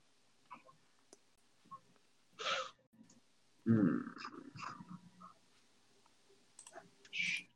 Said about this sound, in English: You guys are clicking on your character sheets, aren't you?